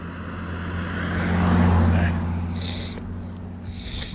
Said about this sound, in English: Hang on. We're just going to wait for the truck to go by.